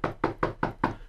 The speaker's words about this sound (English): Well, Baruch Hashem, Janusz lives upstairs, so let me knock on his door. Hello, Janusz, open the door.